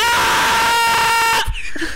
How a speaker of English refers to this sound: Okay, that one, it only cut out like a couple frames of it. So it just sounded like you were dying some horrible death.